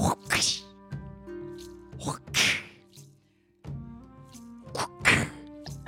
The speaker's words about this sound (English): you're passing through the threshold of this magnificent mansion, and you hear a crack of a whip.